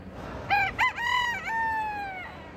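A rooster crows once at a state fair poultry exhibit with rows of hens, ducks and roosters, a loud cock-a-doodle-doo with a stuttering start and a long drawn-out final note, over a faint background hum.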